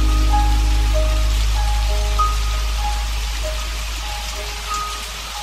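Steady rain patters down on a hard surface in a dense, continuous hiss, with faint high electronic tones drifting over it. No one speaks.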